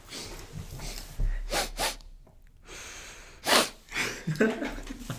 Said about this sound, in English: Some ASMR nose sniffing.